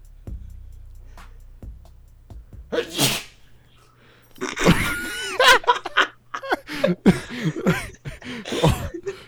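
A sharp sneeze bursts out after a low hum at the end of a song recording, followed by a string of breathy, laughing exhalations and snorts.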